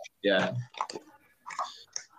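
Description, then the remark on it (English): Chewing of a small Corova mini cookie, a 10-milligram edible: a few short, crunchy mouth sounds in uneven bursts, with a brief hum-like vocal sound near the start and no clear words. “Speaking of which, I might munch on one right now. Corova mini cookies, 10 milligrams.”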